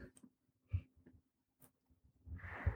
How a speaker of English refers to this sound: Sorry, I just yawned.